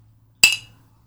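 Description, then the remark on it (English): A single bright clink of a fake ice cube in whiskey against a Conan mug, sharp, ringing briefly before fading over a faint low hum. “That was not a sound effect, that clink. And that was the fake ice cube in the whiskey”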